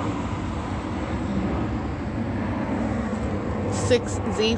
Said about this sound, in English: It is 9:04, that's another plane flying over.